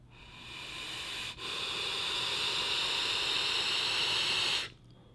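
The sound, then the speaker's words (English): A vape's 0.2 coil head, fired at a really low wattage with the airflow turned off, sizzles with a steady, airy hiss for about three seconds, broken by a brief dip early on, then cuts off abruptly. No one speaks over it. “Oh, I can hear it barely crackling in there.”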